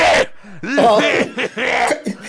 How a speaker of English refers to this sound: … has a cold, I keep making … laugh, and he's got a cold. Coughing.